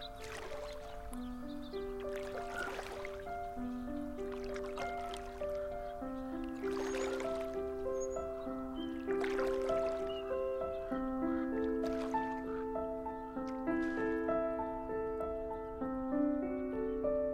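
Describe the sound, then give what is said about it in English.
A rowboat glides across calm pond water, its oars dipping in a slow, steady rhythm of soft splashes and gurgles beneath gentle, sustained music. “Well, how about we rent a boat and spend an hour on the pond?”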